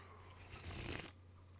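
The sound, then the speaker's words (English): A single short slurping sip of coffee from a cup, a breathy hiss of liquid drawn in, lasting under a second against a quiet background with no talking. “So let me take a sip of coffee.”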